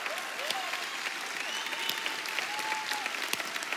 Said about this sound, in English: Slow clap. Just get the slow clap.